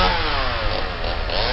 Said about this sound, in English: And what I would do is I would wait until they've entered this hallway, come out behind, rev up the chainsaw, and then just sprint towards them.